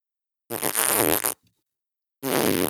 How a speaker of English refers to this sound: This dog starts farting up a storm all over the place. I thought he was going to kill me and my wife in the house at the same time. He was already a gassy dog, so.